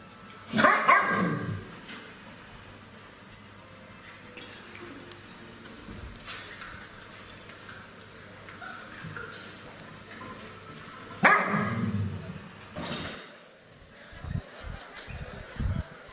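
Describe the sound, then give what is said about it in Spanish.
A mother dog with her puppies barks in two loud bursts, one at the start and one after a long, quieter pause, followed by a few shorter, lower yips and grumbles. “Mire esta bella perrita con sus cachorritos. Póngame audio, porfa.”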